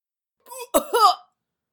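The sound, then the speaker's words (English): A short wheezy gasp, then a sharp cough and a rough, strained follow-up, fairly loud. A voice acts out a character gasping for air and breaking off in a coughing fit from smoke inhalation, with no talking. “gasps for air, then breaks off in a fit of coughing.”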